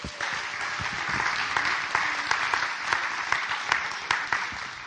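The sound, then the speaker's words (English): A crowd applauds the children steadily for about five seconds, a dense wash of many hands clapping at fairly even loudness, with a few sharper individual claps standing out. “These guys, I love our kiddos, and let's give them a clap.”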